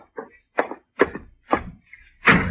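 Someone knocks on the door of a person's room, about six sharp, solid raps at an uneven pace, with the last blow heavier and more resonant. No voices are heard.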